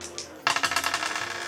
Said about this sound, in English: With that, I'm going to go ahead and pass the dice on